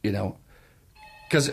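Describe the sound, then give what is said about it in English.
A short, faint electronic telephone ring with steady tones sounds briefly between two bursts of someone talking. “That's him ringing that's now.”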